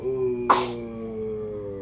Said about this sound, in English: You just coughing on everything, huh?